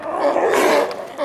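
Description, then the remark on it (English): A dense chorus of sea lion calls from a rookery in the Galapagos Islands: overlapping, bellowing barks and groans merging into a continuous, fairly loud roar with no clear pauses. “A Sea Lion Rookery.”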